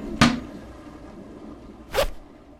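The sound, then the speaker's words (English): Two quick zipper pulls from a 22-second commercial: a short sharp zip near the start and another about two seconds later, over a faint steady background with no talking. “It's I love the zipper song. It's a great commercial.”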